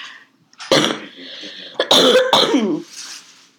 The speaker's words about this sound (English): Yes, you can all listen to my coughing and his talking.